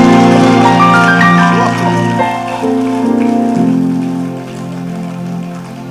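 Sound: audience clapping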